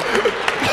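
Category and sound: crowd, audience applause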